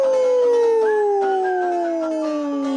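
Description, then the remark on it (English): A single long, loud wolf howl holding one sustained tone that slowly slides downward in pitch for nearly three seconds, with no talking over it. “The Wolf. Ow, ow, ow.”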